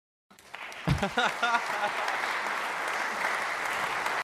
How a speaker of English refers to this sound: So I'm going to skip us ahead to the applause. We've never done this before.